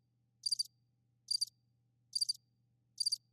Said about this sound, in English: Do we have crickets? I'm almost positive I've got them.